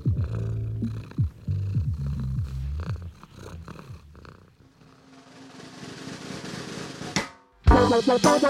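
A cat purrs in a steady, rhythmic low rumble. It gives way to a rising hiss of noise, and a short burst of higher, tonal sound comes at the very end.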